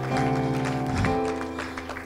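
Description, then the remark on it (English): A crowd claps its hands to the Lord in a steady rhythm during worship, the claps blending into a sustained backdrop of music with held tones, fairly loud and continuous throughout. “Let's clap our hands to the Lord right now.”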